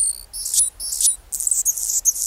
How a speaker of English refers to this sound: And not just any bird, it's a hummingbird. A male Anna's hummingbird, whose throat and crown flash iridescent rose.